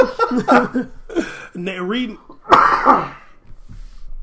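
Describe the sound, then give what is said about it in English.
A hard coughing fit: a run of strained, raspy hacks and throaty bursts, peaking in one harsh explosive cough before tapering into quieter wheezy sputters. “I see stars right now from the cop cough.”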